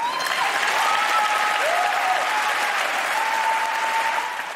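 Loud, sustained applause from a large crowd after a speech, a dense steady roar of clapping with a few high whistles and cheers rising through it, easing off slightly at the very end.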